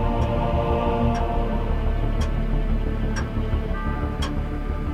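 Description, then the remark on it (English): An old clock under sheets, set ticking by vibration, ticks steadily, five sharp ticks about a second apart, heard over a dense, constant background hum that nearly masks them. “It's just an old clock, Mark. Vibration will have made it start ticking.”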